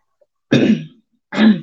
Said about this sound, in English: Excuse me. I'm clearing my throat on podcast.